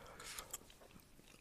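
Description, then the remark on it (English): Quiet chewing of something peppermint-flavored: a couple of crisp crunches near the start, then softer, moist mouth sounds trailing off over the next second. “You don't experience that peppermint flavor as soon as you start chewing.”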